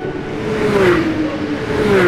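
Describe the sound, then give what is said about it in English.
A NASCAR race car, a special car built to go over 200 miles an hour, roars steadily at high speed, its droning pitch sliding slightly over a couple of seconds, loud with a rushing whir. “NASCAR racing! People who drive in NASCAR races drive special cars that are made to go super fast, over 200 miles an hour.”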